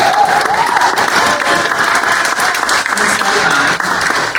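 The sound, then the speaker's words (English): Sustained audience applause, a dense, steady wash of many hands clapping at an even loudness for several seconds, with no voices standing out. “And so go ahead and clap for her.”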